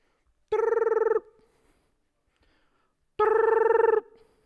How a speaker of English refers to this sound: Got my phone. I'm calling a millennial.